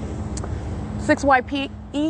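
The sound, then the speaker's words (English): Steady low rumble of vehicles, including a fire truck, driving by on a road, continuous throughout, with a man's voice speaking briefly over it toward the end. “That's what they're doing now while the fire department is here creating light activity. That's a demon using a fire truck.”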